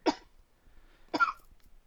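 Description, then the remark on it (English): Two short, harsh coughs about a second apart, fairly loud, with quiet background between them and no talking. “A little COVID cough in there?”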